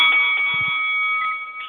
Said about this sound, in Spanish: Ok, ya tú sabes, al sonido de la campana, para adelante.